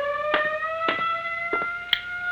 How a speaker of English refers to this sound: First the siren must stop. It offends my ears.